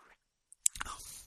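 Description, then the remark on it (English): A soft click, then a quiet slurp as someone takes a short sip of pumpkin beer from a glass, with faint wet mouth sounds trailing off. “So, Pumpkin, it's in my glass, and I'm going to give it a little sip.”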